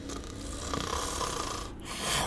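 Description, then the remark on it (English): A voice imitates heavy snoring: a loud, rattling rumble drawn out for about two seconds, with a brief catch near the end before another raspy snort. No talking. “I've never heard you snore, either.”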